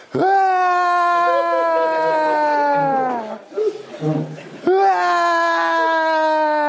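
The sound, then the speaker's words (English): A man screams and wails loudly, holding one long anguished cry, then gasping and sobbing briefly for breath before launching into another sustained wail. “And I fall flat on my face and start screaming.”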